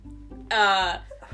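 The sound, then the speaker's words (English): A single sneeze: one loud, brief voiced burst lasting under half a second, rising abruptly out of a quiet background hum and then cutting off. “Bless you.”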